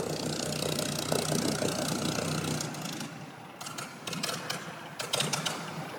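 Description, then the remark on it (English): A Seafire fighter aircraft's piston engine doing engine runs, a steady throbbing roar that eases off partway through and then surges in short bursts, heard alone with no talking. “We're just being photobombed by the sound version of photobombed by the Sea Fire, which is doing engine runs at the moment.”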